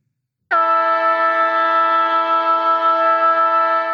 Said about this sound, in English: that siren is loud this week.